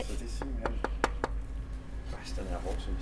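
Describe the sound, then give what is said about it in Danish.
Five quick, evenly spaced knocks on the casing of a naval mine made to blow up a huge warship ring out over a steady low hum, followed by faint murmuring voices. “Kan man prøve at banke på den?”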